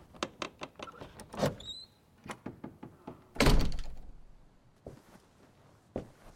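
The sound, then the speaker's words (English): A door thuds shut with a heavy impact as someone walks out, preceded by a series of small clicks and handling knocks, then a couple of softer bumps as things settle into quiet. “I blew out the candle lantern by the door and walked out.”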